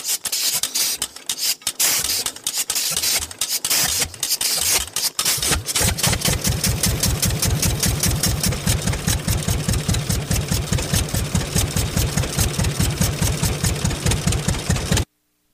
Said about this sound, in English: That's an old-timey John Deere tractor where you would use a crank, get the flywheel going,